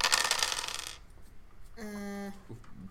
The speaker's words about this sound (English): Give me a wits awareness. Oh boy. It's a bunch of dice. Oh yeah.